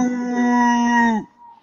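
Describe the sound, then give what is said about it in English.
A single drawn-out howl from Cooper, a dog, steady and fairly loud, holding one long tone for just over a second before cutting off into near silence. “What's the dog doing?”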